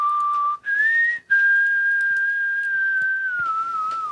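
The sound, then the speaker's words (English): A person whistles a short tune: a few clear sustained notes separated by brief breaks, the pitch rising then holding and gently falling. Fairly loud, no talking. “whistling bit. The Star Trek bit.”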